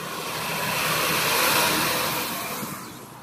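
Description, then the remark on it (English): A smaller truck passes by, its engine noise swelling to a broad rushing roar around the midpoint and then fading as it moves away. No one speaks. “A littler truck.”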